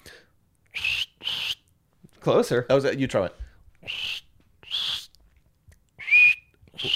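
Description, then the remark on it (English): Someone imitates cricket chirps with short, high, breathy bursts repeated in a loose rhythm, interrupted by brief talking and ending with a rising whistle-like chirp. “It's like, that was supposed to be cricket noise.”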